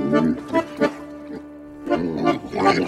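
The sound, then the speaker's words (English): A pig grunts and oinks in several fairly loud bursts, falling quiet briefly in the middle before a longer run of snorty grunting resumes. “And the captain is a pig.”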